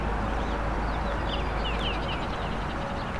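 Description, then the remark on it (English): A Baltimore Oriole sings a few short, clear whistled notes, fairly faint, at 50 Point Park (50 Point Conservation Area), over a constant roar of highway traffic. No one speaks. “There we go. Baltimore Oriole.”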